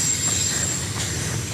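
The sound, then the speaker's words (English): A train rumbles past on railway tracks in the morning, its steady low roar filling the scene with a faint metallic whine and periodic wheel clacks on the rails. “That's my not thinking of going near the railway tracks in the morning.”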